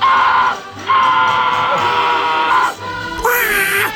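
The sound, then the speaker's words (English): A voice imitates a loud, strained scream in three bursts, a short one, a long sustained one, then a final shrill outburst, raw with a slightly duck-like rasp, mimicking a man screaming on the Space Mountain ride. “He screamed from the, he screamed so loud, he blew his vocal cords.”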